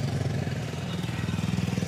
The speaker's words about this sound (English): There's a motorcycle gang out here, bro.